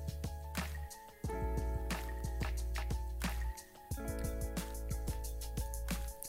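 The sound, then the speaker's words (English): Someone sips coffee in a run of short, wet slurps and drippy liquid sounds, repeating irregularly over a steady low hum, with no talking. “I got to take another sip of it.”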